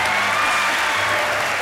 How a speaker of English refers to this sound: Come on, let's give her a big round of applause.